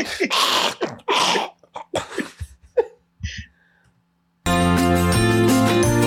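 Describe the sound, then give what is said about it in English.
A dog's reverse sneeze: a quick run of loud, harsh snorting gasps, then softer snuffles and a brief silence before a bright music jingle starts. “So normally a sneeze will be the expulsion of air out through the nose, but on a reverse sneeze, it's where air is actually coming out and in, and they're trying to expel some either nasal contents or even nothing at all.”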